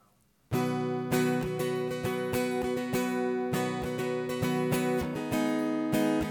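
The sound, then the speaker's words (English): A guitar is strummed in a steady rhythm, playing a song that had just been sung, loud ringing chords with regular sharp strokes that start after a brief silence and keep going without any voices. “All right, just play it on the guitar.”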